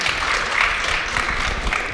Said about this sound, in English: Yeah, clap.